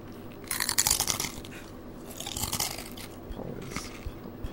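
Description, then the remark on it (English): Crisp, crackly crunching of chips in three bursts of bites and chewing, with short pauses between. Moderately loud and bright, with no talking over it. “But basically, this is called 30 Seconds for Fans of ASMR.”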